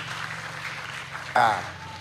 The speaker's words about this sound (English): Clap for Gabon, Vice President.